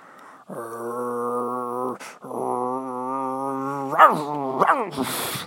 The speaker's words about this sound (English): The dog started to bark at them.